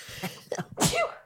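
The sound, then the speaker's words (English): A single loud sneeze bursts out after a couple of short sharp intakes of breath, ending in a brief vocal trailing sound. “Bless you. Thank you.”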